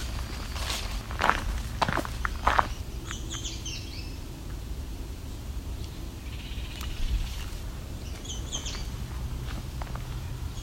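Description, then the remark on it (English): Outdoors, two brief songbird phrases, a yellow warbler's and a Baltimore oriole's, ring out a few seconds apart, while footsteps crunch and shuffle. “So, yellow warbler and a Baltimore Oriole.”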